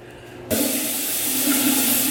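shower water running

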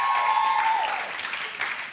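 applause

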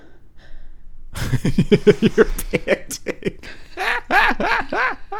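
person panting

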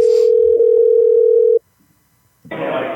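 telephone dial tone

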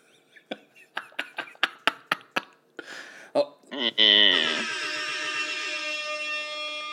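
toilet flushing

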